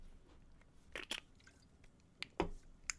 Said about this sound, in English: Takes a sip of Monster. I literally am.